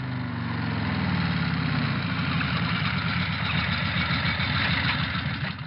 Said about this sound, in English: It came by motorbike. Posty Dale is certainly using a wide range of delivery methods these days.